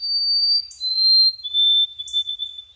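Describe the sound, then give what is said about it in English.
A white-throated sparrow's song: clear, pure, high whistled notes held long and stepping slightly lower, with brief higher flickers between them. The song stands alone with no voices. “Poet Laureate Ada Limón, I tear up a little every time I hear the song of a white-throated sparrow, thinking about Ada's poem, "Sparrow, What Did You Say?"”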